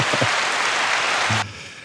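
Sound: applause sound effect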